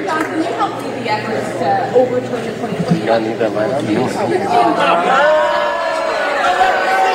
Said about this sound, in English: fellow Republicans booing and shouting.